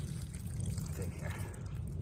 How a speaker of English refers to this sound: Oh, and then I'll just do what I always do is empty out the excess water from our